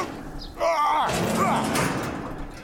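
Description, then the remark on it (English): A metal roller door squeals and rattles loudly, a sustained harsh clatter that rolls on for a couple of seconds before easing off. “Wait, bloody roller door.”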